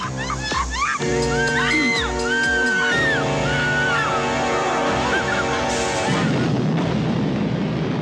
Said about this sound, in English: Like a Death Star explosion. It's like they threw a car off the house instead of a Grim Reaper.